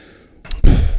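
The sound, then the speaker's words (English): A brief breathy intake, then a loud, rough, low throat clearing, caused by allergies, that rasps on for the rest of the second, with no talking over it. “Let me clear my throat.”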